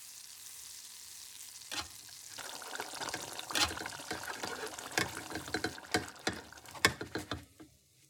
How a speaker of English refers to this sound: Oh. Sizzle.